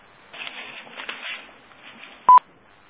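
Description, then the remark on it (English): Telephone keypad tones: a short, loud pair of touch-tone beeps, star and three pressed to unmute on a phone call, near the end, after a stretch of faint muffled handling noise. No one speaks. “So maybe the person, if you unmute, do a *3, identify yourself, and go ahead with the question.”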